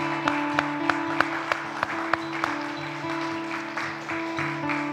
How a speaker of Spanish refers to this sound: ¿Cuánto le pueden dar un fuerte aplauso? Dele fuerte el aplauso al Señor, déselo fuerte.